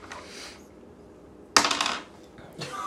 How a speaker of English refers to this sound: So, let's see. So roll a d4, roll a d4 for damage.